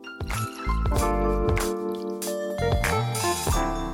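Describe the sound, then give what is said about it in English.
Fizzy water is poured into a cocktail glass holding gin, ice and syrup to make a Scottish gin and tonic, a steady liquid gurgle lasting a few seconds with light splashing and fizz. “And the fizz for this is going to come from fizzy water.”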